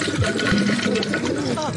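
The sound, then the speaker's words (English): Water gushes steadily into a bathtub, a continuous hissing splash that fills the short clip, with a voice briefly audible over the flow. “So I'll put it in the tub right now. I'll run the water here.”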